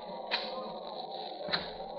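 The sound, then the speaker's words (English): Two sharp clicks over a steady background hum, about a second apart, as the door of a room is unlocked and its latch releases as it opens, moderately loud. “Unlock the door. You'll have to come out of your room sometime.”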